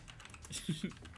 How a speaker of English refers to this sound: Heck, I'll type it right now if we can edit out me typing and make it shorter, but I'm gonna do it right now.